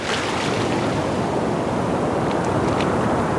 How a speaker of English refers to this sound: And unlike the Caribbean, the water here is murky and freezing. Okay, now I'm walking backwards from the beach into the ocean.